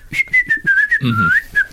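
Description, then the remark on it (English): A person whistles a lilting tune, clear, the pitch gliding up and down in short phrases with a brief low rumble of background noise partway through. “Whistling was a very popular pastime.”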